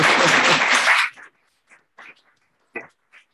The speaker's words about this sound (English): well-deserved round of applause.